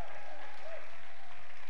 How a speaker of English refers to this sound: How about a big cheer for all of our first-time guests today?